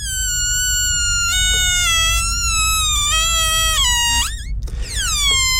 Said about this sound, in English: It sounds like the air being slowly let out of a balloon. You nailed it. I didn't even have to give you the options.